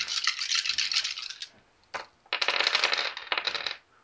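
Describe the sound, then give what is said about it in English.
Six dice rattle and clatter in bursts, shaken and tumbling across a hard surface with bright clicking, pausing briefly between two rolls, fairly loud with no voices. “So 2 dice for potency, 4 dice for damage. So 6 dice altogether.”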